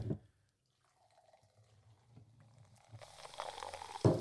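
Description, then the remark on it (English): Flavoured seltzer pours into a cup, starting with low gurgling and building into a loud fizzing hiss of carbonation over the last second or so, with no voices. “yeah, let's pour them out and give it a proper try.”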